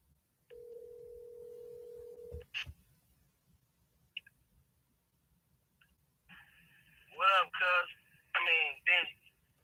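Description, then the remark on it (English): A phone rings with an incoming call from a videographer: a steady electronic tone, a few clicks, then a higher sustained ring broken by loud warbling bursts, with no clear talking over it. “Hold on the phone. One second, okay? Videographer guys calling me right now.”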